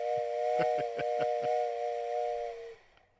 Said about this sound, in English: Blow Play the whistle. Play the fucking whistle.